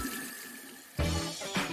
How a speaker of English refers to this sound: After the process has calmed down, open the taps and let some lukewarm water run for a minute or so. It should wash off all the residues that were clogging your pipes.